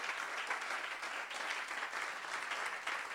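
A crowd at a religious conference claps their hands together for Jesus. The clapping is steady: a dense, continuous wash of many hands applauding at once, with no single beat standing out, holding an even, fairly full level throughout.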